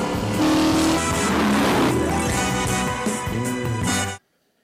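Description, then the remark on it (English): A Dodge Charger muscle car engine roars loudly, revving with rising and falling pitch as it accelerates for about four seconds before cutting off abruptly into silence. “I will drive the car I want to drive. Charger, man's last stand.”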